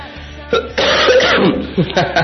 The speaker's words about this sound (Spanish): Ay, esta tos no me ha dejado, pido disculpas a usted por escuchar, sí, a usted que me escucha, porque está escuchando mi voz completamente aguarda, entonces rasposa. Y mi tos inclemente, porque sí he estado un poco enfermo estos días,